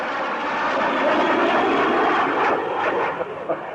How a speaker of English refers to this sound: There is a fighter plane approaching. And when I say now, the jet will be directly over my head. Now!